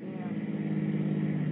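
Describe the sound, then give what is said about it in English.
A car engine hums with a steady, low rumble as the vehicle pulls away in snowy weather, fairly loud, with no talking over it. “Will you get into the car? Okay. Well, thanks. But listen, We're off again.”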